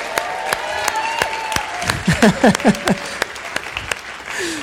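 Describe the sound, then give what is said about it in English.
A church audience claps and cheers for 18 people being baptized, steady applause with a few whoops and voices rising over it, loud. “Come on, let's just give them a wild applause.”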